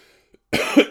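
A single harsh cough bursts out after a brief quiet moment, followed by the start of another cough right at the end.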